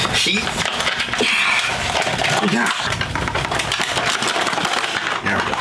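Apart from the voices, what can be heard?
cardboard box being opened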